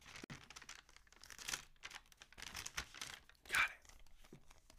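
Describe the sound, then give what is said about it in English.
Crackling rustle of tape and paper being slowly pulled away from a page, coming in a run of uneven tearing bursts with a sharper rip near the end. “I have another piece of paper that's taped to this page.”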